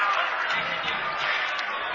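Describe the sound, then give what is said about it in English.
A dense, steady roar of a large basketball arena crowd cheering after a buzzer-beating three-pointer ties a college game at 58-58 and sends it to double overtime, loud and sustained for the whole stretch with no clear individual voices standing out. “Listen to this crowd!”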